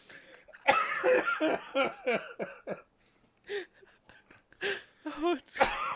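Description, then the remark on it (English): A harsh, barking cough from a person who is sick repeats in a loud series of hoarse bursts, clustered at first and then coming in separate fits after a brief pause. “And it's like I have like this barking cough, and now it's like today is like, oh, man, I kind of feel better”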